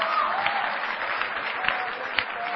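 A crowd claps steadily for a girl, a dense patter of many hands with a few sharper claps standing out, for a couple of seconds without any speech.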